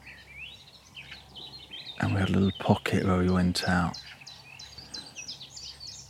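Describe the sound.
Nightingales singing at dawn in Dorset, a steady stream of bright chirps and warbling phrases, briefly interrupted by a person speaking in the middle before the birdsong continues alone.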